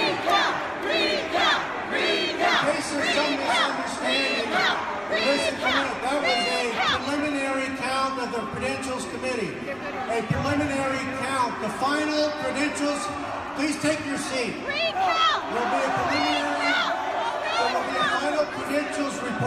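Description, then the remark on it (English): A large crowd boos and shouts "no" during a voice vote, a loud, dense wall of overlapping voices that swells and dips but never stops across the whole stretch. “If you're booing me, you're booing Bernie Sanders more”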